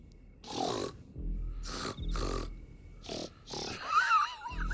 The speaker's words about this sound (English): Oh, this is making me sick. It sounds like they're going to hawk a loogie.